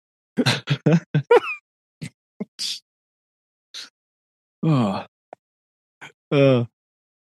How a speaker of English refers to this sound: People are still thinking about cereal and here you are sneezing all the place. It's distressing.